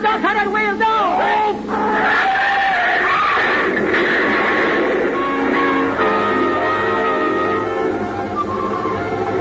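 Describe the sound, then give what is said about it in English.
A car swerves with squealing tires as the driver spins the wheel, then crashes into a loud, chaotic roar of noise. Screams and shouting voices mix in throughout, intense, without a break. “I did was spin the wheel, and when I woke up, I was here in the hospital.”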